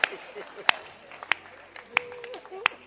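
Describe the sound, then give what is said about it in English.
A handful of sharp, scattered hand claps for Ghanaians ring out at uneven intervals, about five in three seconds, over a low murmur of crowd noise rather than full sustained applause. “Clap for Ghanaians.”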